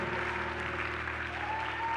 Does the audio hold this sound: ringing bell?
no